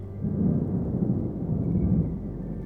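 Thunder from a storm without rain rolls in a deep, continuous rumble, heavy in the low end and holding steady in loudness for the whole stretch, with no voices present.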